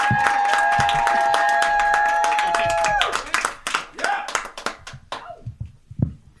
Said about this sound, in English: Everybody give applause for Becky Brown.